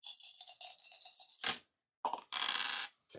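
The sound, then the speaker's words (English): Dice rattle and clatter across a hard surface in quick clicking bursts, with a brief pause before another scattering roll and a final short rattle. Fairly loud, no voices. “With 5 dice, he only rolled 1 that was not a 4, so.”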